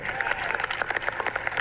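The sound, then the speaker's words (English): A large audience of a class applauds during a speech by Joe Biden, many hands clapping in a dense, steady patter that stays fairly loud and even throughout the brief moment, with no voices standing out. “I would think you'd have an opportunity when I say that about the Navy's clap, but being here together.”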